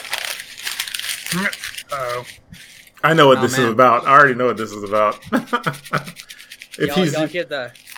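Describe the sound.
Paper crinkles and rustles in short, scratchy bursts, loudest at the start, then continues in patches around and beneath a man's voice speaking.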